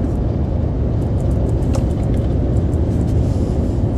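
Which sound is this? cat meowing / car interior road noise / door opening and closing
car interior road noise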